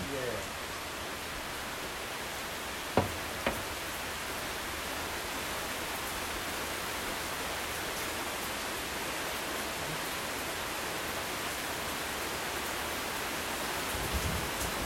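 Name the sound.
heavy rain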